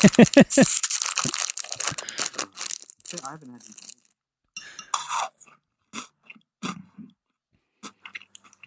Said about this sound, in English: Nice. Good stuff. Good crunch. What's your ranking for a Malteser?